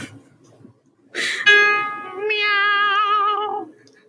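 A single long, drawn-out meow, loud, rising then wavering before trailing off, with quiet background noise before it.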